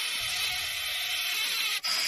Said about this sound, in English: It's wheezing. It's a toad.